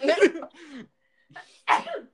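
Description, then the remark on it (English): A fairly loud sneeze bursts out, followed by a short breathy sound and then a second sharp, sneeze-like burst, with brief quiet gaps in between. “Bless you.”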